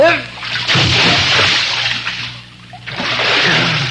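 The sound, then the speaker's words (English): A big splash as someone jumps into pool water to search for a lost gold necklace, followed by a few seconds of churning, sloshing water and another burst of splashing, with a brief voice at the start. “Didn't I tell you the water's wonderful?”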